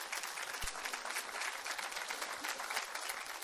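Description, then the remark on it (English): A large group claps steadily for the staff and students of a school of ministry, producing a dense, continuous wash of applause that stays fairly even in loudness throughout, with no voices standing out. “And so, guys, do you want to come up this morning, staff and students, and come and give them a round of applause, please.”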